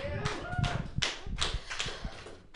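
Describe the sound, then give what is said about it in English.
Scattered audience clapping from those with divorced parents, a handful of sharp, irregular claps spread over a couple of seconds rather than a full round of applause, with faint voices murmuring underneath. “Right, clap your hands if you have divorced parents.”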